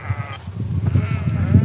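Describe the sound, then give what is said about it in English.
A flock of sheep bleats continuously in pasture in the Causses limestone plateau country of central France, several wavering calls overlapping at moderate loudness, with a low, steady rumble underneath and no voices. “This is actually sheep country.”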